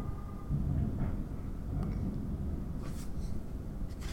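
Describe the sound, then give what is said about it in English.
A long, low rolling rumble of thunder that carries on steadily for several seconds, sounding muffled, with no voices present. “That was some long rolling thunder there.”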